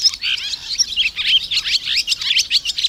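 Swallows twitter in spring as they select nesting sites and build nests, in a continuous, busy chorus of high, rapid chirps and warbling trills, overlapping and steady in loudness throughout, with no voices.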